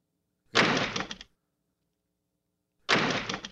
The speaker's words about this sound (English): Okay, let's do a janitor's door. Clink.